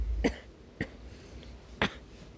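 Three short, dry coughs spaced unevenly into a phone microphone, with no talking. The first is a little heavier, and a quiet low hum sits beneath them.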